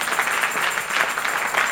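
A crowd at a preacher's sermon claps steadily, a dense, continuous patter of many hands with no clear rhythm, holding an even loudness throughout with no voices standing out.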